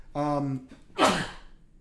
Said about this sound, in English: Yeah, when we record here, we need a cough button for me when I'm sneezing.